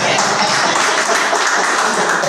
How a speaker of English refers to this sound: In the way, God bless you. I'll clap for my boy.